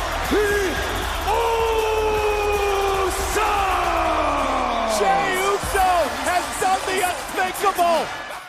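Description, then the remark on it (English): A big wrestling crowd cheers loudly and steadily after Jey Uso pins Roman Reigns, many voices yelling and whooping together in long rising and falling swells, breaking into choppier bursts of shouts near the end. “what was the crowd feeling like during this match?”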